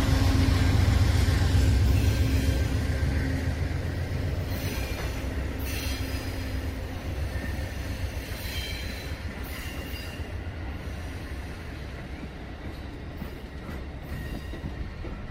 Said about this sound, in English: Some of the container cars look like they're designed to have lorry trailers on them, as they have the fixing plate that you'd see on a tractor unit. Two locomotives on the front of that train, part of the Norfolk Southern Railroad Company.